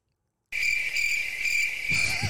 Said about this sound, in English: We can't hear that with our headphones turned down, but those are crickets, mate.